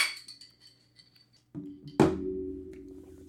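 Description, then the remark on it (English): Drink glasses clink faintly during a toast, then one is set down with a sharp knock that leaves a low, sustained hum ringing out for over a second; no one speaks. “Well, that was a hum when we're setting down the drinks.”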